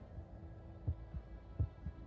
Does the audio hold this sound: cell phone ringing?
no